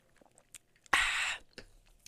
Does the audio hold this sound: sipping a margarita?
yes